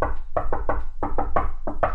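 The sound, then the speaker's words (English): Rapid knocks on a door in a coded 3-3-3-2 knock pattern, about nine sharp raps bunched into quick groups of two and three, fast-paced and fairly loud, with no voices. “The knock or the code word? No, the knock.”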